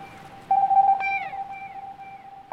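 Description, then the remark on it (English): A stylized echolocation call of a bat named Buffy, sent toward the edge of a riverbank and echoing back loudly: a steady, mid-pitched electronic tone holds throughout, broken by a sharp click and a brief falling sweep, then rings on alone with no voices. “She turns her head and sends a sound to the edge of the riverbank. The sound echoes back loudly.”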